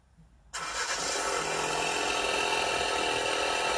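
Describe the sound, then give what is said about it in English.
After a brief quiet moment, the two-litre engine of a Focus RS car bursts to life and holds a loud, steady roar with a gritty, crackling exhaust texture until the end. “Nice 2 litre crackly pod. Yeah, yeah. Listen to that.”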